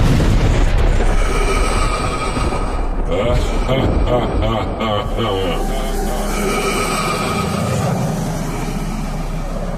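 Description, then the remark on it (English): A huge, loud explosion boom representing the Big Bang rolls into a deep, sustained rumble with heavy low-end roar, filling the whole stretch without fading away. “And then, the Big Bang.”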